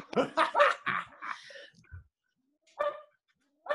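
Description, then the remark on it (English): A dog barks at squirrels in a rapid run of several sharp barks, pauses, then lets out a couple more single barks. “my dog is barking.”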